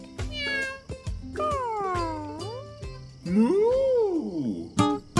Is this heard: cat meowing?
yes